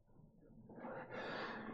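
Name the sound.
sneeze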